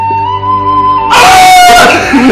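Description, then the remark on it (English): A single voice imitates the long, strained yell Gandalf gives as the Balrog's whip grabs his ankle and pulls him down. It starts as a held tone, then bursts into a loud, raspy cry with a falling pitch, with no other sounds. “The Balrog falls, but it grabs onto his ankle with the whip and is pulling him down and he yells.”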